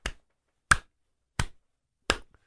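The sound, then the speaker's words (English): Four crisp, sharp snaps at a slow, steady rhythm, fairly loud with silence between them, mimicking the sound of alligator jaws clapping shut, as heard in the dark in Tampa, Florida. “And that, I said, what is that clapping? He said, those are the jaws of alligators.”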